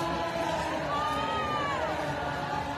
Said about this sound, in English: We'll watch the next one come by. See how the crowd comes to life when they bring them by, they cheer them on. It's so odd. They're all like, I love you. Love you for getting arrested.